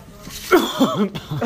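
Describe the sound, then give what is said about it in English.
A few raspy coughs come in quick succession, hoarse and voiced, after a brief quiet moment at the start. “Just cough.”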